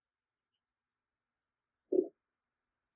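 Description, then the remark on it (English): Dice rolled onto a table for a covert roll in a tabletop role-playing game, coming up a one: a faint tick, then a short clattering knock about a second later and one last tiny click. Quiet, with no voices. “Rolling with covert for the lie.”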